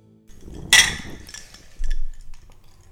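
A bright, ringing clink of glasses touching in a toast at a feast, one sharp strike with a shimmering tail, followed by soft table knocks and low shuffling.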